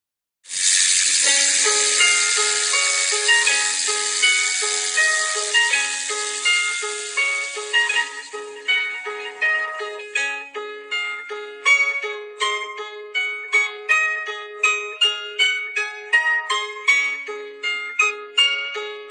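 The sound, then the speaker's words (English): A wound-up musical box plays a tinkling melody of bright, plucked metallic notes in a steady rhythm. For the first several seconds a loud, hissing whirr runs underneath; no one speaks. “Here is a box, a musical box, wound up and ready to play.”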